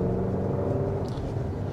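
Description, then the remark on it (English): A pickup truck's exhaust rumbles steadily at idle, a deep, continuous low drone with a throbbing engine tone, even in loudness throughout, with no voices. “I can hear the exhaust.”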